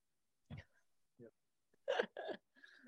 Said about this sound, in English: excuse me. Talking about COVID makes me cough.